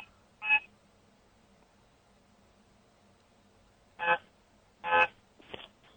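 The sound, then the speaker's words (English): Short, bright honks from a two-horned bong: a single blast, a long quiet pause, then two more in quick succession followed by a few fainter, choppy toots. “Well, what is that honking I'm hearing? My bong has two horns.”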